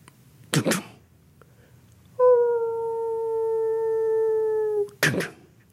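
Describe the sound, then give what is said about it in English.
A single drawn-out wolf howl, steady and clear for nearly three seconds and sagging slightly in pitch, framed by brief rough bursts of noise before and after. No one speaks. “you wake up with that sound of like a wolf howling.”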